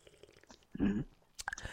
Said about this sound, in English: Take a sip from my WWF Niagara Falls cup before we start.